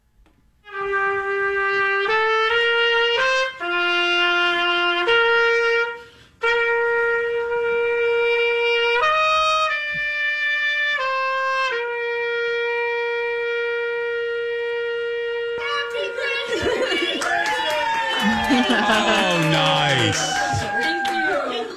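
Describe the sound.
A solo horn plays Pomp and Circumstance, a slow, stately graduation march, as a socially distanced serenade at a graduate's door, its long sustained notes stepping through the melody, then the music gives way to overlapping excited, emotional voices.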